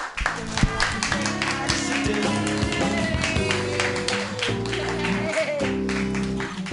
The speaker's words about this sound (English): Keep it clapping